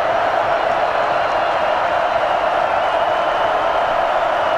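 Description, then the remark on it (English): A stadium crowd at a Middle Tennessee versus Virginia Tech football game roars during a fourth-and-10 play in a steady, dense wash of noise that holds at full volume for the whole stretch without breaks or swells. No voices stand out. “Crowd at full throat.”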